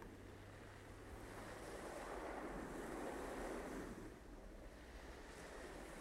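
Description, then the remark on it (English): Gentle ocean waves wash in a steady, continuous surf, swelling softly and receding with a broad hiss, heard alone at a moderate, even level with a faint low rumble beneath. “And allow the gentle waves to flow.”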